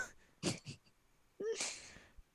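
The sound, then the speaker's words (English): A short, breathy burst is followed by a sharper sneeze, a voiced catch then a broad hissing blast, fairly quiet, with no talking. “Did you sneeze on me again?”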